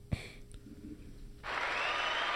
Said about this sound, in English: I applaud her. Hand claps.